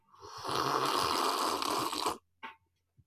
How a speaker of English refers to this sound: Me sipping tea like this.